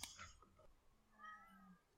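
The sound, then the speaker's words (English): A cat meows insistently, a couple of drawn-out wavering cries, with no talking over them. “You have to take out all the meows that you can hear in the background.”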